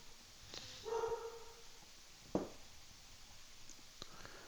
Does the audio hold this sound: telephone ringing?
no